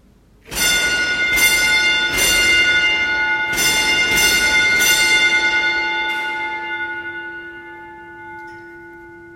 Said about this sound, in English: Above ground, I pulled the bell once used to communicate with the hoist operator from hundreds of thousands of feet underground. It was used to send signals and had a language all its own.